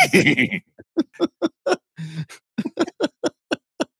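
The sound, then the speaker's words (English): A person imitates a horse whinny with their voice: a loud, quavering opening cry followed by a rapid series of short, evenly spaced bursts, like a horse's fluttering neigh. “you do the horse. You do the horse sound better than I do.”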